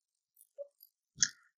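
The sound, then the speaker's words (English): A single quick sneeze bursts out sharply after a few faint, soft clicks and breaths, then fades in a brief airy tail. No one speaks. “Wait, Gesundheit.”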